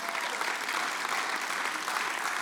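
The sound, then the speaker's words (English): A church audience claps steadily, a dense, even wash of applause that holds at the same level throughout without any voices on top. “And we can clap for that.”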